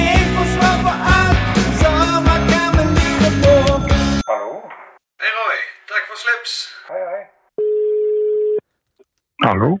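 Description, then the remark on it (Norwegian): A steady telephone ringing tone, heard while placing a call, sounds once for about a second, clear and fairly loud. It comes after a stretch of busy music and some talking voices. “Vi ringer også.”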